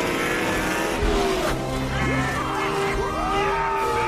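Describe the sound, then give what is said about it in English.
A loud race car engine roars and revs as it speeds back into a race after a fast pit stop, its pitch sweeping up and down, with squealing tires cutting through the continuous, busy noise. “It was a great stop, but he's still gotta beat that race car out.”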